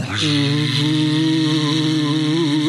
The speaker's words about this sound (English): Well, let's do this. Let's put on our fake vacuum cleaner so Noreen thinks we're busy.